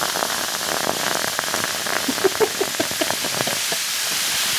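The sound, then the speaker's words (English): A drink poured from a tin over ice: a steady, bright fizzing hiss scattered with small crackles and clicks as the ice shifts, lasting several seconds without any voices. “I'm pouring mine on ice. And I'm drinking mine out of the tin.”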